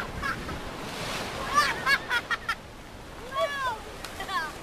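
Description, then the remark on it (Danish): Steady surf of a blue sea roars along a sandy beach in sunshine, a continuous wash of breaking waves, while a few honking bird calls ring out above it in short bursts. “Solen står lige ned på vandet, og bølgerne bruser, og havet er blåt.”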